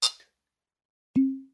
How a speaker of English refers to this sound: Shot glasses. Oh, yeah.